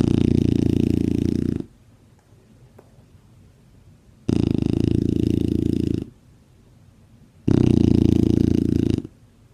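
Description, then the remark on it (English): Reuben, a Shar Pei (a Chinese wrinkle dog), snores loudly: three long rumbling snores spaced evenly with quiet pauses between them, no one talking. “That's him snoring in the background.”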